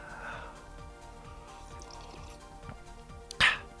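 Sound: drinking water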